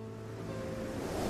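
Steady roar of sea waves outside a lighthouse, a continuous low rumble of surf that swells slightly louder toward the end, with no voices present.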